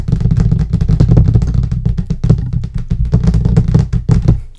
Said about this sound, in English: I'm gonna try something. Tell me how this is for you. Okay. Can you guess what I'm typing? Can you guess what I'm typing?